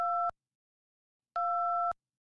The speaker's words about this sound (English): Yeah, I'm sorry. I can't get through. The line's busy.